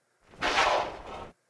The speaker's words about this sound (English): Here are the pig grunts by themselves.